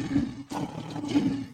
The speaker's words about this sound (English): Gotta get that man the Lion roar for that, man.